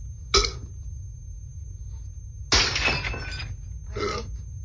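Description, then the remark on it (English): Glass breaks in three bursts: a sharp crack, then a longer crunching shatter, then a smaller crunch, fairly loud over a steady low rumble, with no voices. “Kneeling on broken glass is my favorite pastime.”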